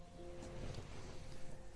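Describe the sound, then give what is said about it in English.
A faint, distant engine drones steadily for a couple of seconds, a low motorbike hum with a slight tonal whine, half-buried in a broad wash of outdoor background noise. “There's a motorbike going past in the distance”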